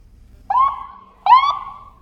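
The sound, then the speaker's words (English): A fire station alarm, sounded every morning at 7 a.m. sharp, gives two loud, mid-pitched tonal blasts, each rising slightly before holding steady and fading, with a short gap between them and no voices. “I live close to the fire station, and every morning at 7 a.m. sharp, they sound an alarm.”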